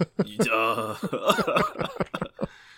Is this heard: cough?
yes